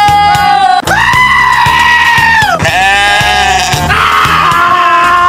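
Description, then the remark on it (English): Loud, drawn-out goat bleats, three or four wavering cries in a row, over a steady rhythmic beat underneath. “All right, GOAT or GOAT of the week.”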